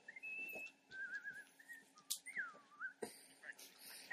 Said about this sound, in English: I love he whistles sea shanties.